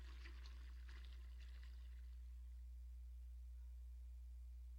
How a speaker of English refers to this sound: David took that water and he poured it out.